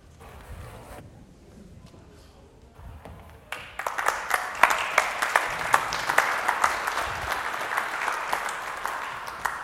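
An audience at Westminster Chapel breaks into applause for the preacher after a prayer and a few quiet seconds, the dense clapping swelling quickly and holding steady as a loud, crackling wash of many hands.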